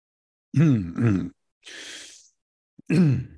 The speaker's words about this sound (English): Forgive me for clearing my throat. Let's see if we can edit that out.